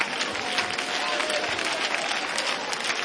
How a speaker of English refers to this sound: Let's all clap our hands to the Lord one more time. Hallelujah.